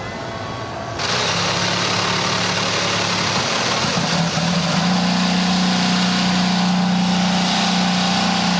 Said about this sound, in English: Drivers, start your engines!